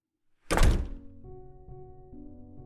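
A classroom door opens with a single heavy thunk, followed by a steady, muffled din of classroom bedlam that continues underneath at a lower level.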